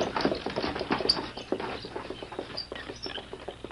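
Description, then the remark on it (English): Hooves of a horse team clop in a quick, uneven patter as a wagon is pulled along, with a steady rattling rumble underneath, moderately loud, no voices. “Drive around front. Leave the team standing at the hitch rail across the street.”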